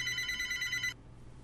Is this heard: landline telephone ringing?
yes